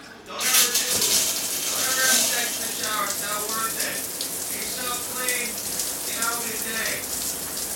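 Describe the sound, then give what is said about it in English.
Steady hiss of shower water running continuously, filling the whole stretch, with a man's voice talking faintly underneath the spray. “I'm in the shower right now, trust me.”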